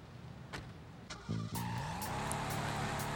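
A beat-up video game car's engine revs up and accelerates, its pitch climbing, while tires squeal in a brief skid. The loud vehicle noise comes with sharp clunks, and no one speaks.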